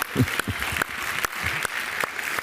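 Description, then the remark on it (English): Five or six sharp hand claps land at a steady, unhurried beat against a constant hiss, with low murmuring voices underneath. “Because if we were going to be gone, I can clap to that too.”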